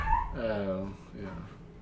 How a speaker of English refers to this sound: We got dogs wrestling upstairs. That's fun.